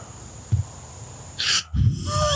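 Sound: heavy breathing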